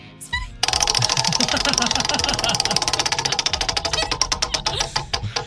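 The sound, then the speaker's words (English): A prize wheel is spun for a radio call-in game, with a loud, rapid rattle of clicks that gradually slows, the individual ticks spreading farther apart toward the end, over a low background murmur. “Going to go ahead and spin that wheel.”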